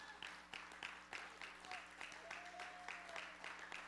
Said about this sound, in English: A hand clap of praise. Now, that was a hand clap, but can we give God a hand clap of praise?